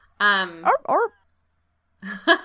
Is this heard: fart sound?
no